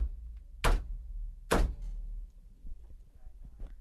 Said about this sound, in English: Excuse me while I bang my head on the desk here.